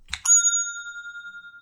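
A single bright bell strike, like a small bicycle bell, rings out clear, then its metallic tone hangs and slowly fades with a faint shimmering pulse.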